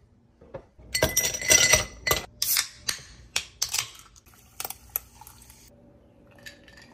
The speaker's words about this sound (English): So I am going to put some ice in a glass. Cool it off that way. Ooh, phrasal verb there. Cool it off. Cool this off. Get this cold. Take a few sips.